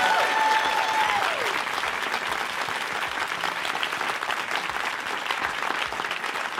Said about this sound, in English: So that is it for this evening. Again, we really wanted to thank our guests. So we can give our guests a massive round of applause for being here.